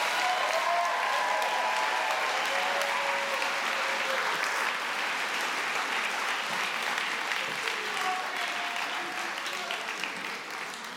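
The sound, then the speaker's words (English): Sustained applause from a sizable audience at a baptism event as people leave the stage, steady and fairly loud throughout, with a few faint voices mixed into the clapping before it begins to taper slightly near the end. “So would you please applaud them as they leave the stage?”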